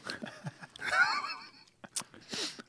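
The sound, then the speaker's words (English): Wet crunching of someone biting and chewing a pickle, with a few sharp bursts and some faint vocal murmur mixed in. “Everyone is hearing the crunch.”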